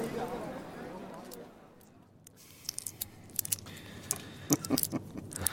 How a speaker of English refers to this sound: I've broken this coin in two, see? See the contents? You may have it assayed, but it is not pure silver.